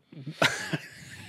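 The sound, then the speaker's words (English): A couple of sharp, harsh coughs with a rough throat-clearing rasp between them, from someone who has just swallowed something down the wrong pipe. “No, I just swallowed wrong and down the wrong pipe. Want to cough out my lung right now.”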